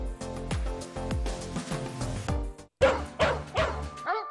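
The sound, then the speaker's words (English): A dog barks repeatedly in a steady rhythm of sharp, loud woofs, with a few higher yips toward the end and no one speaking. “Friday the 19th is for the dogs.”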